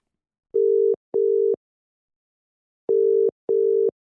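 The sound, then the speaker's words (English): A phone ringback tone heard from the caller's end while calling a journalist: two pairs of short, steady electronic beeps, each pair a quick double ring followed by a pause, clear and alone with no talking. “So let's see if we can get Kristen on the phone right now.”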